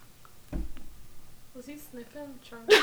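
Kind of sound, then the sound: vocal imitation, voice imitating sniffing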